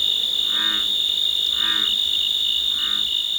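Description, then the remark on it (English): A steady, high-pitched drone of crickets and cicadas fills the background on a summer night in the Cascade Mountains of Northern California while a bullfrog croaks three times at roughly even intervals, each croak a short, throaty pulse. “Crickets and cicadas form the backdrop to the splashes and croaks of bullfrogs.”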